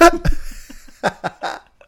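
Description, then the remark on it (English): A handful of short, abrupt hiccups pop out at uneven intervals, each a sharp voiced catch with brief quiet gaps between them and no talking. “They'll probably resurface.”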